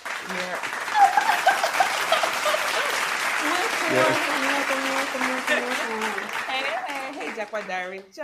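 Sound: applause sound effect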